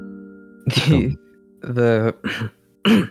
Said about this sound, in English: He shakes his head a bit, coughs, try and clears his throat.